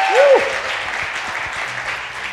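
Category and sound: crowd, audience applause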